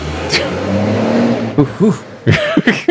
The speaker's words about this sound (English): What is with, like, the giant trucks all around your window? It's not a giant truck. It's a fucking diesel pickup.